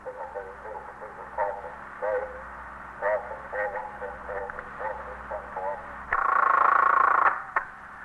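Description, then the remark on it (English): A muffled, tinny call over the monitor of KEA, the police radio, crackles in a police station house, the dispatcher's voice too faint to make out, ending with a loud burst of squelch and a high tone. “The stillness was broken occasionally by the hum of the switchboard or a call over the monitor of KEA, the police radio.”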